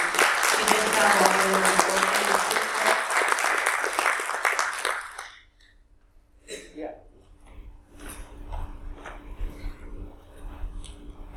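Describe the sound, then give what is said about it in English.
A crowd applauds with dense, steady clapping for about five seconds, then it cuts off abruptly, followed by faint rustling and low murmurs. “So if you guys can go ahead and give her a round of applause.”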